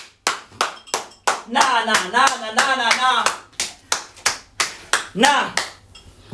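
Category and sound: crowd, round of applause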